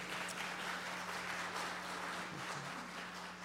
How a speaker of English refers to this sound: You got a round of applause there